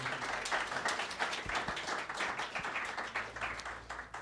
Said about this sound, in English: a big round of applause as she takes it?